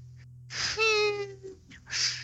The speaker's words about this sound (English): Who's breathing into their mic? That'd be me. You're just nose whistling us?